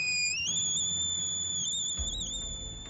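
A piercing electronic shriek blares continuously, two shrill tones sliding upward and then holding steady and loud for the whole clip, as a personal rape alarm for students, suggested by the National Union of Students, goes off when its top is pushed.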